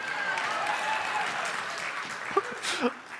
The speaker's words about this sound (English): I hope you hear everybody clapping